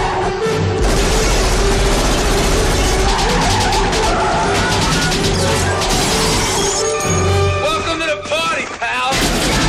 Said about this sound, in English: Willis said it to the cop after the cop's car got shot out.